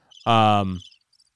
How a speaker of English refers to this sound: There's crickets.